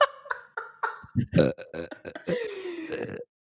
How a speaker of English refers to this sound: That was a weak burp.